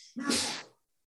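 A single sneeze: a brief hissy intake of breath, then one loud, abrupt, breathy burst that fades within half a second, followed by silence. No one speaks.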